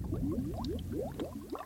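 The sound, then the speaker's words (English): Thick, gloopy bubbling lava, a steady run of low rising blurps and pops as molten lava churns, fairly loud with a dense rumbling bed beneath and no voices. It is part of a sound essay led by Timothy Ferris and Ann Druyan that depicts prehistoric Earth. “So next comes the sound of thunder, volcanoes, bubbling lava.”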